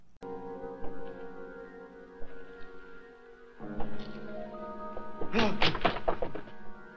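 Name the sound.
creaking door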